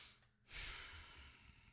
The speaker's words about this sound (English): That was just one big breath.